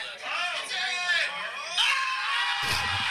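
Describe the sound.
A group of about 36 golf fans on a Scotland trip, with the Jigger pub to themselves, erupts in loud, sustained cheering and whooping as Rory makes an eagle on Sunday, many voices shouting together with a thump near the end.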